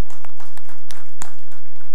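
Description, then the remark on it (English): An audience applauding Normandy Park's 100th anniversary, heard as scattered, irregular hand claps at a moderate level rather than a dense roar, with no talking over them. “Normandy Park is today celebrating 100 years. Can we applaud that?”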